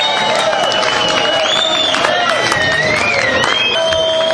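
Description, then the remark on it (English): A packed concert crowd of 500 or more roars and cheers continuously for an encore after the second set, with shrill whistles rising and falling over a dense wash of clapping and shouting, loud and unbroken throughout. “As you hear them roaring in the background.”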